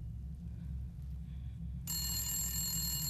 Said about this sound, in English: 4 days later, I was at my homeboy's house when the phone rings.